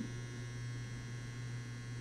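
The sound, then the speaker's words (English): A clothes dryer drones steadily in the background, a constant low hum with a faint whirring wash above it, unchanging throughout and with no voices. “That's the heater, not the heater, that's the dryer in the background.”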